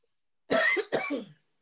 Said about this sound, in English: You all right? You don't need to be coughing like that. And you know what I mean? Like, you gotta have to mute yourself if you coughing like that.